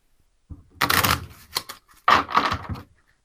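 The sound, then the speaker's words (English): Two quick, crisp riffle shuffles of a deck of playing cards, reshuffled during a game, each a brief burst of rapid fluttering clicks with a short pause between them and no talking. “Flip 8 cards. All right. I might have to shuffle again.”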